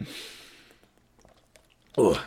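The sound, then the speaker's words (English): A soft slurping sip of water with an airy hiss, then a few faint mouth clicks and swallows in near silence before a voice starts talking. “We're going to be starting with UNLV after I take a sip of water.”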